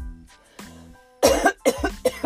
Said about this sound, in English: We better talk about something instead of coughing all the time. I'm sorry. I just started choking.